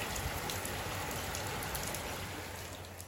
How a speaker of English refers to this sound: Biblical rain today.